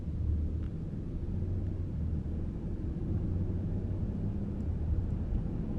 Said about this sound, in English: The soothing muffled sounds of the engine, shaking lightly, going side to side, side to side, side to side, creates a wonderful, comforting